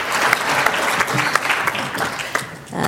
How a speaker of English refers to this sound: So please let's give him another round of applause, and thank you very much.